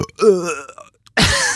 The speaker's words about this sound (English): Did you just time that burp on purpose? Kinda.